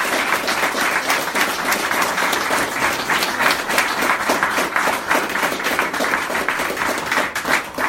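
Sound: crowd cheering and applauding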